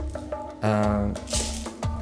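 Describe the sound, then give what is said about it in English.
Several sharp, irregular clicks and clatters of dice rolling across a table sound over a steady voiced tone with a brief louder burst in the middle. “Apologies for the dice.”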